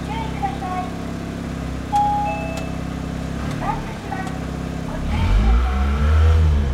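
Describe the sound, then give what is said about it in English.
An engine of a right-hand-drive vehicle idles with a steady low rumble, then revs up loudly near the end, its pitch climbing and surging. A couple of short beeps and brief voices are heard over it. “Stop revving it, dude.”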